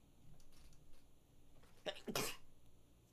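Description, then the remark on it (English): A single sharp sneeze bursts out, a quick catch of breath followed by an explosive, hissy blast, with only quiet background before and after. “Bless you. Thank you.”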